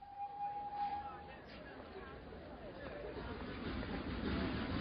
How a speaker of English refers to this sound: I waited at the station at Kilchester for the train to take me back to Broadhinney. It was market day, and the platform was very crowded.